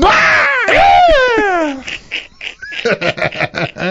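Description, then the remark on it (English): A man lets out a loud, strained, drawn-out scream imitating wrestler Brock Lesnar's roar, followed by a burst of rapid, choppy laughter-like yelps. “I imagine he gave the Brock Lesnar scream.”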